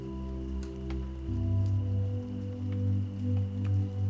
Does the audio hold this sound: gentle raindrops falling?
yes